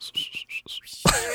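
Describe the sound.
A person whistles five short, high notes in quick succession, slightly wavering, then the whistling breaks off into a sudden loud, breathy burst of noise.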